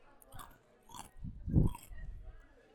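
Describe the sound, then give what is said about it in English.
Close-up chewing, wet and crunchy mouth sounds in a few irregular bursts right by the microphone, with a louder bite near the middle and softer smacking after. “Very on brand for this podcast. Chewing sounds and lots of spaghetti.”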